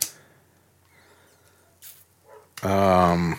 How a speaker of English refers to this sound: Shira is still barking. And you know what I say to that? Are you not going to boo her? She's a champion.